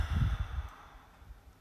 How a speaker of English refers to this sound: Take a deep breath. Exhale.